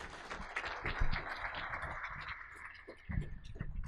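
An audience applauds steadily for about four seconds, a dense crackle of many hands clapping at moderate loudness, with a few louder individual claps near the end.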